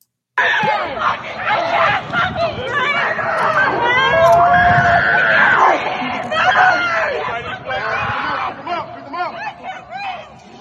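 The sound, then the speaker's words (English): A loud, chaotic crowd scene of people being arrested in Atlanta: several voices shouting and screaming over each other, a dense continuous hubbub that stays intense for the whole stretch. “So Antifa, they arrested a couple of people and they were screaming like babies while being arrested today in Atlanta.”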